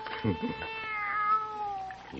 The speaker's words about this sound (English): Nobody's going to hurt you, kitty, no. How about some milk, huh?